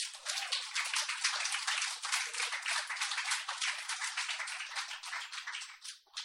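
A crowd breaks into sustained applause, a dense, steady patter of many hands clapping at full volume for several seconds before it starts to thin at the very end.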